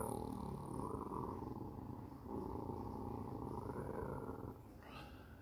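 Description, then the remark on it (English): A low, continuous animal growl rumbles steadily in a cave for several seconds, fairly loud, with a slight dip partway through and no voices. “He cuts the lights off, and he start hearing this noise in the cave, like this growling.”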